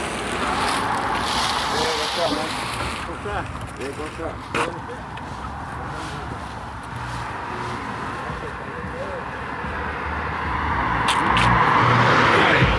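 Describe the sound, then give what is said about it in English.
A landscape truck carrying a couple of men rumbles by outdoors on a sunny late morning at about 50 degrees. Its broad engine and road noise swell louder near the end, with wind noise throughout and a person talking briefly partway through. “Couple of guys in a landscape truck.”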